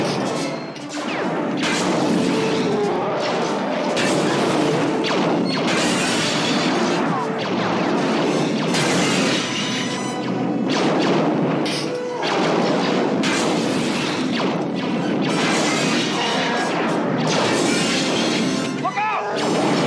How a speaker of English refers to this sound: There's the subtlest, tiniest bit of like an AT-AT cannon at the very end, towards the end. There's like a really quiet AT-AT cannon.